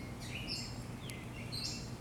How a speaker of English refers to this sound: Alright, we got some nice bird sounds. Oh, we got like a whippoorwill bird or whatever that's called.